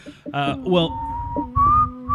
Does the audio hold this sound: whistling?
yes